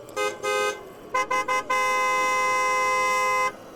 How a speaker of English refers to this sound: I'm outside of the tent. The car is still around, right? Mm-hmm. I go over and honk the horn a few times.